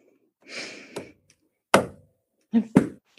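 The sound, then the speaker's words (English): A breathy gasp, then two sharp knocks on wood about a second apart, close and fairly loud, with soft breath sounds around them and no talking. “Eric, if you're here, knock twice.”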